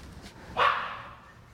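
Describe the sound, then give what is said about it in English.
A single sharp dog bark rings out at moderate volume, its sound lingering briefly before fading into low background noise. “Also, get your dog out of here.”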